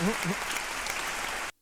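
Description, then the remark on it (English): A short burst of dense applause for craft brewers, steady crackling claps filling about a second and a half before cutting off abruptly, with a brief voice-like murmur at the very start. “So little round of applause to craft brewers.”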